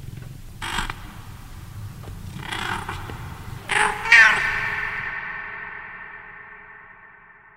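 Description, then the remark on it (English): A cat named Donkey meows insistently from a bed by a desk, wanting attention: a few short calls followed by a louder, drawn-out meow that trails off, with no one talking. “Little outburst from Donkey, who sits in a bed by my desk the whole day, just kind of meowing for me to pay attention to him.”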